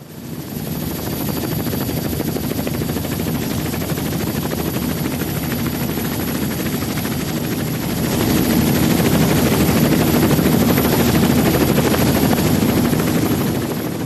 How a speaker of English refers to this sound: Oops, I'm a little too close to that helicopter.